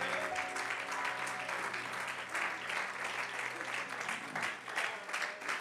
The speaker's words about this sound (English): You'd make me feel a lot better if you'd set your Bibles down and one more time clap your hands and lift your voice and praise the Lord tonight.